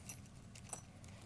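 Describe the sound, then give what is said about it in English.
Small metal washers and bolts for attaching legs clink and jingle as they are poured into a small plastic bag, a handful of light, scattered metallic taps over about a second, fairly quiet with no talking. “So I'm gonna use this little plastic bag to dump everything.”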